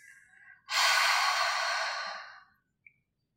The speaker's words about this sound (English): We'll inhale through the nose to fill up the lungs and exhale through the mouth, making a sound like fogging a mirror. So it will sound something like this.